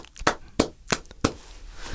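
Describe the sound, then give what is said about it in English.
Four sharp hand claps by one person as a sign of respect, in a slow, steady rhythm, each a crisp, bright smack that dies away quickly, with low background noise between them and no talking. “Wait, let me clap.”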